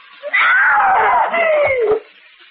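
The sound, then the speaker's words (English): A woman lets out one loud, piercing scream lasting under two seconds, high-pitched and wavering before sliding downward and cutting off abruptly, heard on its own. “You screamed so loudly.”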